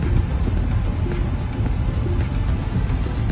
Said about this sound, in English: We're gonna take off on the first ride on the new 2022 Tesla Model Y Performance. Man, this thing is smooth. Don't even have to hit the brakes. Just keeps going, flows.